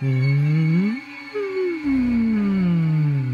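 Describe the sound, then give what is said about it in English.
Whale song from a massive whale floating overhead like a balloon: loud, eerie moaning calls that swoop upward, pause briefly, then slide slowly downward, layered over a steady high shimmering drone with no talking. “This massive whale floats like a balloon overhead, and it even gives off something just eerily reminiscent of whale song.”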